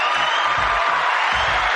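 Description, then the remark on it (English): A steady wash of crowd applause on a radio show, welcoming a guest calling in, fills the short clip, loud and dense throughout, with low rhythmic thumps pulsing underneath. No one speaks. “So please, let's give her a nice warm round of applause.”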